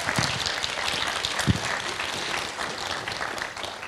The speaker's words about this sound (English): How about we give them a big clap as they head back?